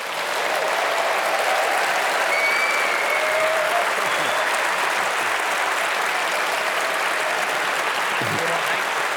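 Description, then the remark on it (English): Sustained, loud applause from a large audience for the cast of a performance fills the whole stretch, a dense steady clatter of many hands clapping with occasional faint whoops mixed in. “And can I lastly say a round of applause for this amazing cast.”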